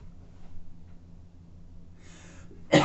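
A person coughs, a shorter breathy burst followed by a sharper, louder cough, after a quiet, low-humming pause with no talking.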